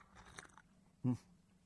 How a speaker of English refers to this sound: It's my third cup of tea this morning. Third cup of tea, and I'm loving every bit of it, every slurp of it.